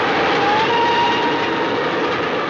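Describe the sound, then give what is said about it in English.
A steam train blasts through a station at about 100 miles an hour in the opening shot of a David Lean film, a loud, steady roar of rumbling wheels and hiss with a faint whining tone running through it, and no voices. “but the movie opens with just a spectacular shot of a train blasting through a station.”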